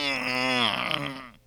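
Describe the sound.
A person vocally imitates the straining moan they made at the gym while lying on their back doing a chest workout with small dumbbells: one sustained, strongly voiced groan that holds its pitch, dips slightly, then trails off over about a second and a half, with no other talk.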